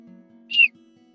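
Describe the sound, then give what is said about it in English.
A single short, high whistled chirp, a person imitating a bird call, rising briefly out of near-silence over a low, steady background hum. “I'll start to make bird call noises.”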